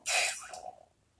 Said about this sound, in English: If you can hear anything, that's me sipping out the last bit of my hot chocolate.